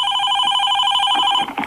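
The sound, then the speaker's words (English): A telephone rings at a radio station with a steady electronic trill, loud, its warbling tone pulsing rapidly before cutting off near the end with no one speaking. “we were very happy and intrigued to get a phone call yesterday here at Hot FM”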